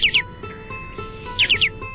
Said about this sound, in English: Short-billed. Long-billed. There's a difference there, no doubt about it. The short-billed dowitcher.